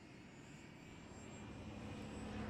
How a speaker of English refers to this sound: Oh, there we've got other jets flying over as well.